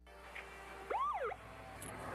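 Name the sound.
police car siren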